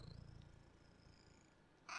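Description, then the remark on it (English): A male cat purrs softly into the microphone, a low rhythmic rumble that is strongest at first and then fades, ending with a brief burst of rustling handling noise. “Listen to his purring. Come on, in the mic, bub.”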